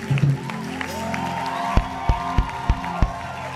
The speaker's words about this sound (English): Come on, begin to put your hands together. I want you to clap for your victory today.